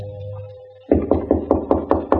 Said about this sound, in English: And then, at 3 o'clock, a knock on my door.